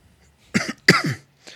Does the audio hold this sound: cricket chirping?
no